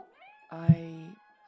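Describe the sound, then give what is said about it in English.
A kitten mewing: a faint, thin cry followed by one louder, drawn-out meow that lasts more than half a second, otherwise alone. “Show me kittens. Kittens.”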